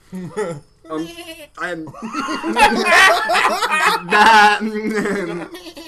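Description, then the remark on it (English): A person imitates a sheep with several loud, wavering, nasal bleats, followed by a longer stretch of exaggerated bleating mixed with laughter. “We're back to the fucking the Boston sheep.”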